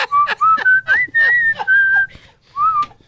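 A person whistles a lively tune of short, pitched phrases, with some longer held notes and brief pauses, clear, with no talking.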